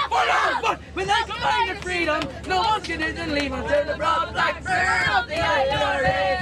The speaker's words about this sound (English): Here on the supporters' bus, the young lads down the back are gathered around a phone singing along with YouTube videos of rebel songs.